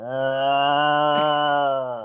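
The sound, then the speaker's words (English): A person imitates a lion's roar with one steady, low, drawn-out vocal growl lasting about two seconds, fairly loud, with no other sounds around it. “That one was kind of scary. That's because that one's a lion.”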